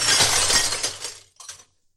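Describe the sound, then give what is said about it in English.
A loud crash of a locked glass display case holding a gun being smashed, a dense burst of shattering lasting about a second, followed by a brief tinkle of falling shards, then silence. “I'll have to smash the glass case.”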